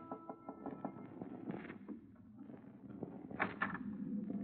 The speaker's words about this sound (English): Then, the night before we were due to dock in Southampton, I was surprised in my cabin by an unmistakably feminine knock on the door.